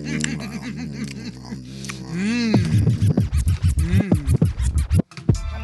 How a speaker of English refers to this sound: It's just supposed to be crunching noises, bro.